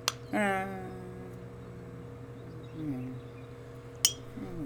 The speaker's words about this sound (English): Do you hear this though? Oh, that's even a glass topper. It's a glass topper.